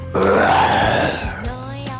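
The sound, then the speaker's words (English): A person, asked to make the sound of a lion, imitates a lion's roar with one loud, rough, gravelly vocal growl lasting over a second, then a softer, more tonal voiced tail that trails off. “Can you make the sound of a lion for me?”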